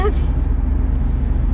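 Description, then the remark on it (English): A car in front of the speakers rumbles along the road, a steady low engine and tire drone filling the moment, with a brief voice fragment at the very start. “My rambling on and on, and the car in front of us have erased our brains.”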